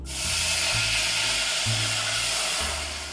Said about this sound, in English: and you know, you might have some little burnt bits stuck from the butter on the pot, and this wine is gonna get rid of it. So I'm gonna pour in the wine, and in the recipe it says be careful, it's gonna sizzle. So you will hear that.